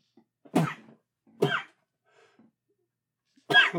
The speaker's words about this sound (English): I'm going to sneeze.